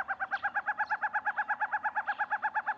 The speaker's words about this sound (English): The forest owl's rediscovery was fascinating, and it's commendable how researchers are working on these rare species. However, the voices of the forest owlets could be muffled forever if the 2020 Environmental Impact Assessment draft is passed.